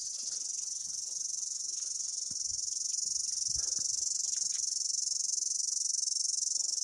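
A loud, unbroken chorus of cicadas buzzes at a high, steady pitch for the whole stretch, dense, with a few faint low knocks and rustles underneath and no voices.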